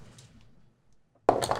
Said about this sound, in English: Okay, now roll a dice for your one.